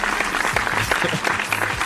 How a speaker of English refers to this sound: Yeah. Episode 60. Clap it up for episode 60. Feels good to be in my 60s.